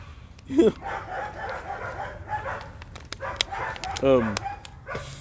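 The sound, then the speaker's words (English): Dogs bark in two short, loud bursts, one early and one near the end, over a busy background of murmuring voices and room noise. “Well, the dogs are barking.”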